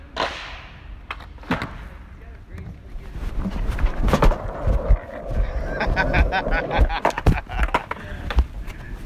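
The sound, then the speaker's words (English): Skateboard wheels roll with a steady rumbling growl, punctuated by sharp clacks and thuds of the board hitting pavement, while voices call out over the noise. “All right, you want to skateboard some?”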